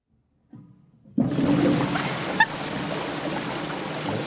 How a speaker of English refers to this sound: Oh, sounds like you're going to need to flush it again.